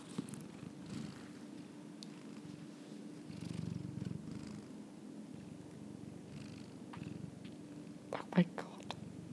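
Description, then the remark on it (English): A pet cat purrs steadily into the microphone, a low continuous rumble with soft rhythmic pulses, followed near the end by a few brief clicks and rustles. “See if you can get a bit of purr.”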